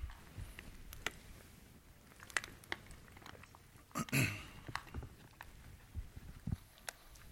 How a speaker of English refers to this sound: And I'm going to take the opportunity for a quick sip.